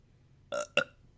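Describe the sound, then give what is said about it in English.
A belch, a shotgun burp, erupts in two quick, raspy bursts back to back, standing out sharply against a quiet background, with no talking. “And that was my shotgun burp.”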